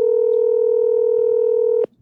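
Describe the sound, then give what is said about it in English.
A steady electronic phone tone hums loudly and evenly for almost two seconds, then cuts off abruptly, like the ringing heard while waiting for a call to connect. “I don't know who has the phone this weekend. They never answer the phone, by the way.”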